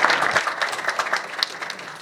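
A crowd claps steadily, many hands producing a dense, crackling wash of applause with no break, fairly close and moderately loud.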